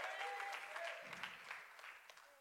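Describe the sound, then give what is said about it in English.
An audience claps their hands together to thank God for his faithfulness, a dense, steady burst of applause that carries on throughout, with a few faint tonal voices or cheers floating above the clapping. “Would you clap your hands and thank God for his faithfulness?”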